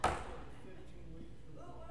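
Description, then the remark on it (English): One sharp slap lands right at the start as audience members slap their neighbors on the shoulder, then gives way to a steady murmur with a few faint scattered pats as people talk quietly among themselves. “Slap your neighbor on the shoulder and tell him we made it through three verses.”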